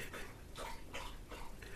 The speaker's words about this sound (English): In the background is Buddy the dog drinking water loudly, trying to sabotage me and express his anger for me not being in last week.